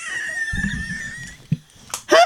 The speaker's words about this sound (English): Oh, you got a cough? Okay. Like, you can laugh into the microphone. It's fine. I know. I realize you have to cough. It's fine.